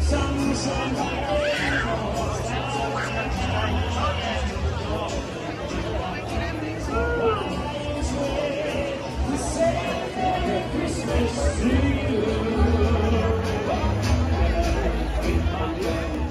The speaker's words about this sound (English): Well, as you can tell, there's a ton of anticipation in this crowd. I mean, people are talking, they're excited, they're joyful. They want to see the lighting of this Christmas tree.